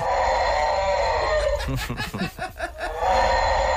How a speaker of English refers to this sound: It actually sounds like a cow giving birth or something. Honestly, doesn't it? You'd imagine. So everyone had their theories on Twitter as to what this can might be, and majority of people were saying that sounds like a fox.